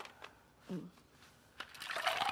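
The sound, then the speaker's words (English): Ice cubes drop into a cocktail mixed with dashes of bitters: a few sharp, scattered clinks, then a brighter rattling clatter as more cubes tumble in, fairly quiet overall. “You want some ice in there? Yes, please.”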